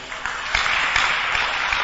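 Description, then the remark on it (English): During a sermon, a crowd claps for Jesus in a steady, dense wash of applause, many hands overlapping with a few sharper individual claps standing out, fairly loud and with no one speaking. “Clap for Jesus.”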